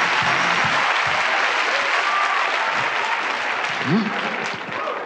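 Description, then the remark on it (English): Dense, sustained applause fills the space, many hands clapping steadily and loudly throughout, with faint voices murmuring underneath. “And I start to clap my hands to summon angels to my rescue.”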